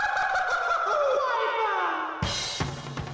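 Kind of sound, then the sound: animal, chicken clucking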